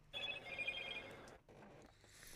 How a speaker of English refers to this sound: Tell your phone to shut the fuck up. I'm trying. It's not listening. It's just, it's a new phone and it has a new notification thing.